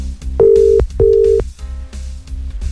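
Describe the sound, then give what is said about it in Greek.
Two long, steady electronic ringback tones of a phone call to Thanasis sound in a row, each about half a second, with a short gap between, loud and clear over a low background hum, and no one picks up. “Ο Θανάσης δεν το σηκώνει.”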